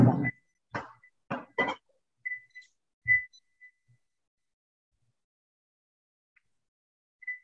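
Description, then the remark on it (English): An alarm sounds in a few short, high-pitched electronic beeps at uneven intervals, following some brief muffled knocks or coughs, with long quiet gaps between the tones. “So the waiver of premium, just hold on 1 minute, my alarm is going off.”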